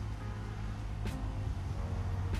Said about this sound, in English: If the traffic's a bit loud, I'm really, really sorry. But ever since the regulations and rules for whether or not you have to stay at home for COVID-19 and, you know, being able to go out now, people are taking to the streets,